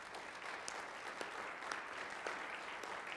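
A church audience applauds steadily to greet newcomers at a Sunday service, a dense wash of many hands clapping at an even level, with a few sharper individual claps standing out, and no voices over it.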